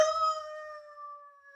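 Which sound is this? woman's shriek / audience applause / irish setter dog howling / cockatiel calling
irish setter dog howling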